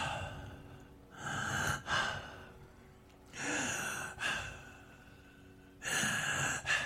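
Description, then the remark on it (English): Heavy, breathy inhales and exhales from a man in a played song recording, repeating in slow, uneven cycles, about four loud rasping breaths with quieter pauses between, and no talking. “Okay, let me give that a running start and let him do the whole breathing thing without me interrupting it.”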